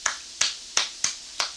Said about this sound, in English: Are you applauding?